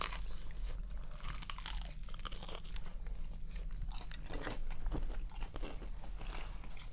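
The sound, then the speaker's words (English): A crunchy bite into a chicken pesto mozzarella sandwich, followed by a steady run of crisp crackling chews and crumbly crunches over about seven seconds, with no talking. “But yeah, so this is that's a chicken pesto mozzarella.”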